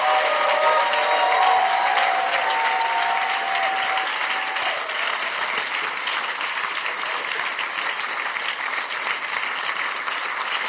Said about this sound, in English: And as we close off, yeah. Your clapping is not impressive. I don't know what you are thinking about.